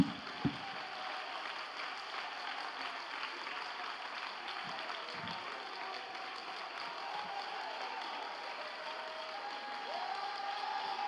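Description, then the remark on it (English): A large crowd claps their hands in faith at a preacher's call, a dense wash of many hands blending into continuous applause at an even, fairly loud level throughout. “Come on, somebody clap your hands in faith.”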